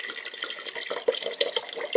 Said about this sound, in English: That's got to be a good sound right there next to the microphone. I love the pouring of new wine.